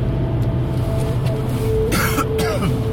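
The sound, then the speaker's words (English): A couple of sharp coughs burst out near the end, one right after the other, from a person with a cold, over a steady low engine-like rumble of a car driving over bumps. “I had to have a big coughing fit.”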